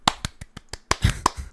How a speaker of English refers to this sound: You just clapped. You were supposed to. That was on you.